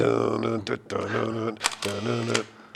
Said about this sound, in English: This is the first camera to use what's known as a vertically traveling metal blade shutter